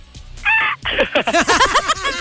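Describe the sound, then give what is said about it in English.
A caller's voice strains over the phone for a very high whistle-register note as a singing competition try, holding a thin, piercing tone briefly before breaking into a run of loud, choppy, squawk-like yelps that rise and fall in pitch. “Like a squawk. Yeah, more like a squawk.”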